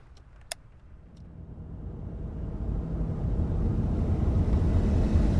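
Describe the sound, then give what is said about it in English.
A car engine rumbles low and steadily, swelling louder over several seconds as the vehicle approaches and pulls up, with a single sharp click near the start and no voices. “We're here. Everybody out of the car.”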